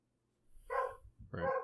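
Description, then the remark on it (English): Dogs barking, two short harmonic barks about half a second apart, clear, with no voices over them. “Those are actual dogs for those listeners.”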